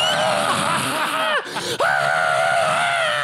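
A person screams loudly and continuously, the shrill voice wavering in pitch and breaking off briefly twice before resuming at full force.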